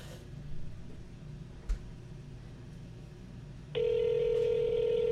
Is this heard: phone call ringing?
yes